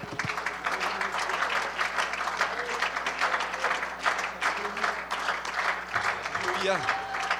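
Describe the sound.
A church audience applauds God during a morning service, a dense wash of clapping that holds at an even level for several seconds, with faint voices and murmurs mixed into it.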